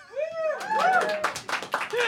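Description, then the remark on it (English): A crowd bursts into cheering and whooping, voting by applause for whether a Godfather Part 4 film should be greenlit, with rising shouted voices over a dense wash of clapping hands that builds and carries on steadily to the end. “Please, by way of round of applause, give me a cheer if you think that Godfather Part 4 should be greenlit.”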